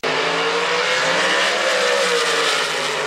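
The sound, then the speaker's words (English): A loud, steady roar of a drag race car engine with tires squealing and screeching continuously throughout, intense with no pauses, as the car sits in the water box heating its tires before making a pass. “All right, let's make a pass. Let's get them hot. Let's put them in the water box.”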